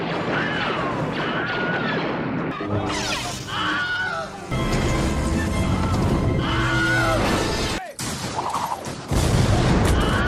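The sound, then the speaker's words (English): Several short, high-pitched Wilhelm screams rise and fall in pitch, each cutting through a loud, continuous din of crashes, booms and gunfire-like bursts, with a brief drop to silence near the end. “But my favorite thing about those outtakes is the previously unreleased Wilhelm scream that follows the one that we know, where it's like kind of a less enthusiastic one.”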